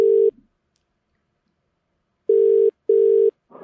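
A phone call ringing out: the steady electronic ringback tone, heard clearly as a short burst, a pause, then a close double ring pulse before the line clicks.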